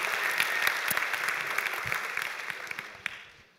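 An audience applauds a man on his birthday, a dense, steady patter of many hands clapping at once, with a few sharper claps standing out before it tapers off at the end.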